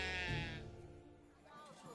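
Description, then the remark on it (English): A goat lets out one loud, wavering bleat. The call fades within about a second, followed by quieter, softer sounds. “The beer comes from Heidrun, the mighty goat.”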